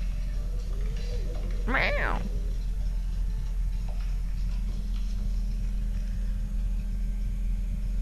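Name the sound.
cat meowing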